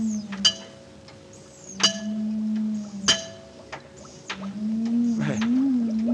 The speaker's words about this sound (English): I'll switch on the encephalograph. Notice the faintness of the amplified alpha rays? Notice the comparatively slow rate of pulsation? Now, notice what happens when I tap on the glass jar.